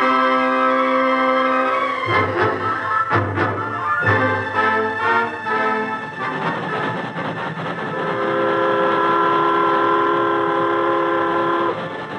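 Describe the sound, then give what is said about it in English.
A train heading toward Ransom rolls steadily along the rails, loud, with sustained tonal whining from the wheels and a few sharp clacking bursts in the middle as the cars pass over joints. “All I can say now is that our train will stop before we get to Ransom at a landmark already agreed on.”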